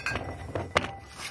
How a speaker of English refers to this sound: When you ring a glass like that, someone has to kiss someone.